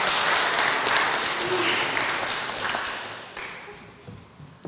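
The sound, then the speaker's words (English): An audience breaks into sustained applause, a dense crackle of many hands clapping that holds steady before gradually thinning out and fading toward the end. “but I think she deserves another round of applause for her work.”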